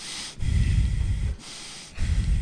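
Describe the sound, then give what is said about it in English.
A voice mimics a person's heavy, angry breathing on walking into a room, with two long, forceful huffs and a third starting, each rough and noisy and separated by brief pauses. “And you just came into my room one day and you were just breathing heavily.”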